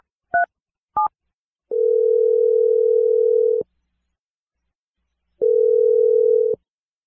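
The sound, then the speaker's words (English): Two quick dial-tone beeps from a telephone keypad as a phone number is dialed, followed by two long, steady ringback tones separated by a pause of silence, clear with no voices. “Dialing your phone number right now.”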